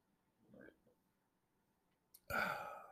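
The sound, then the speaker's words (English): A low guttural burp into the microphone rumbles briefly, followed after a pause by a sudden loud, breathy burst that sweeps across the range and trails off. “And I just burped into the microphone.”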